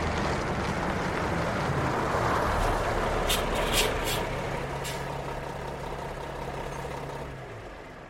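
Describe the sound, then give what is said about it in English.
A vehicle that has pulled over into a gas station area with trucks idles with a steady low engine rumble for the whole stretch, a constant hum underneath and a few brief clanks or hisses breaking through near the middle. “You're pulling into the gas station area? Yeah, there's like truck.”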